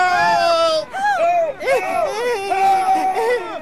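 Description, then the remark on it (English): Several high, shrill voices of bathers on a beach scream in panic at once as a bather covered by a swarm of minnows is pulled into the sea, loud, with overlapping wails rising and falling continuously and no spoken words. “Screams of panic are heard as both blanket and bather are pulled into the sea.”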